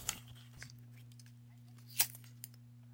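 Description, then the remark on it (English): A few sharp clicks of a lighter being flicked to set a piece of paper on fire to light a candle, spaced irregularly with a louder scrape near the end, over a steady low electrical hum; any crackle of burning paper is faint. “Okay, now I'm gonna light this piece of paper on fire to light the candle.”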